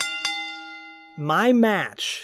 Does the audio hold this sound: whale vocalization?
no